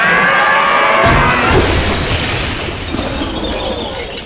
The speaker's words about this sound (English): And now, as you can see, my brother Orville Wright is demonstrating the flight of a plane. This is amazing. What's that? Oh my God, the plane's falling apart!